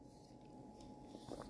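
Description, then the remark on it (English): A quiet sip of artesian water: soft mouth and slurping noises over low background hiss, with a brief cluster of small wet sounds near the end. “Let's sip some 1186 through artesian water.”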